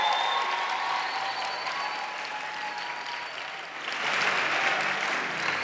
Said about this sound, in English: I want the BMI people to clap for those who came to attend the conference.